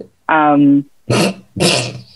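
A dog growls: one drawn-out, whiny, tonal growl followed by two short, rough, harsher bursts in quick succession, all loud against near silence.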